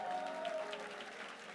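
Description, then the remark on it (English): An audience claps steadily for a group, a dense wash of many hands, with a sustained tone ringing underneath for the first half second or so. “Can you clap for …?”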